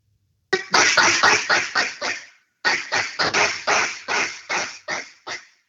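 A duck call worn on a lanyard is blown to make it bark, in two quick runs of sharp, popping bark notes, about seven short clipped blasts per series with a brief pause between, loud with no talking.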